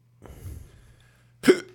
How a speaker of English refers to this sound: Oh, shit, now I got the hiccups.